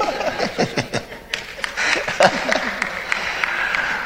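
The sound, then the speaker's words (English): Hands clap in a quick, uneven burst of sharp smacks, with chuckles and murmuring voices mixed underneath for about four seconds. “I thought she's clapping for me.”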